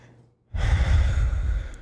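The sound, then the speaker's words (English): A loud exhale rushes straight into the microphone after a brief quiet, a heavy breath with rumbling low-end distortion that lasts over a second. “Stop breathing.”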